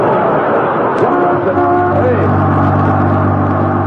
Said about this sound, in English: that's a Los Angeles bus. What's it doing up here in Alaska? It must be the bus that runs to the Los Angeles city limits.